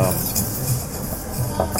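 Metal cutlery clinks and scrapes against a plate during lunch in a few light, bright taps over a steady low background murmur, with no talking.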